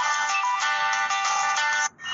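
A phone's default alarm tone from the default alarm app on default settings plays loud and alone: a bright, steady electronic melody of layered high chiming notes that cuts out for a moment just before the end, then resumes.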